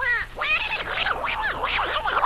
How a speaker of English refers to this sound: That's a duck. A duck? Is it fresh? Is it fresh? Just stick your fork into it.